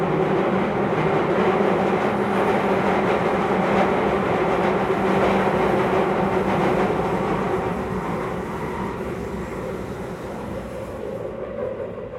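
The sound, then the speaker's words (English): A screeching London Underground train runs loud on the rails, a continuous grinding roar with shrill metallic tones, steady throughout and easing slightly near the end, with no voices. “I set out to try and find the loudest part of the tube network”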